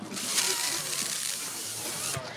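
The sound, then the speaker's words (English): A single steady, airy sucking sound lasts about two seconds, a breathy hiss like a strong inhale through the lips while slurping a crawfish head, then cuts off abruptly. “It sounds like you're blowing up a balloon. But we're doing inhaling instead of exhaling.”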